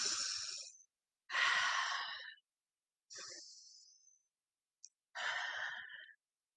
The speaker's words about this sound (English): Again, breathing in through the nose and out through the mouth.